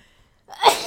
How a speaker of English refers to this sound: Sorry, I gotta sneeze.